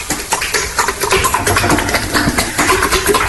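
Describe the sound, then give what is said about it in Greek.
A horse neighs in a rough, noisy whinny that runs for about three seconds, its pitch wavering over a dense, hissy background with no talking. “Έχω την εντύπωση ότι είναι άλογο.”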